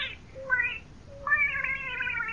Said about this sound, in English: Skippy, Skippy, come here. Come here, baby. And now, folks, I want you to meet our little cat.